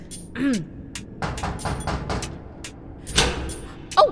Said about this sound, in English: Okay, big, weird door.